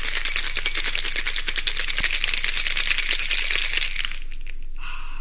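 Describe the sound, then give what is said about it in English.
Ice rattles hard inside a cocktail shaker as an Athol Brose cocktail is mixed, in a fast, steady rhythm of bright clattering hits for about four seconds, then stops, leaving a faint thin tone. “It's time to mix up this curious cocktail, so we're going to go shake up a storm, and we will see you in a minute.”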